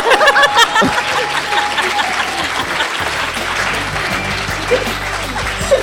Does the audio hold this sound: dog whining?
no